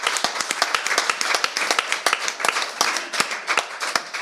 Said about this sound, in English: And thank you to the team at the Gannet. I think they deserve a big round of applause. Well done, everybody.